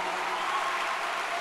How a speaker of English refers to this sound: There you have it, ladies and gentlemen. Round of applause for … and Hill Harper.